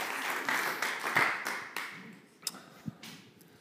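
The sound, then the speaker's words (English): A round of applause from a small crowd for a woman invited up to join the speaker, a dense patter of clapping that peaks early, then thins and fades, ending in a few scattered single claps. No one speaks. “if you want to come join me, you can make some noise, a round of applause for her.”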